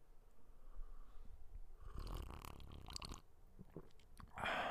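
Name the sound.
sipping tea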